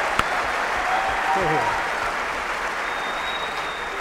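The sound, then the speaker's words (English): A crowd applauds steadily, a dense, even wash of many hands clapping that holds at a constant loudness for the whole stretch, with a brief faint vocal cheer rising partway through. “I'll clap for you.”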